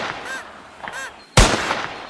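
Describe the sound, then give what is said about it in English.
Outdoors, two harsh crow-like caws sound over a steady background hiss, then a single loud hunting gunshot cracks out and rings off in a long, rumbling decay. “I bet there's some hunting going on around here somewhere.”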